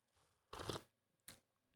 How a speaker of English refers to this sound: Anyway, sip of coffee.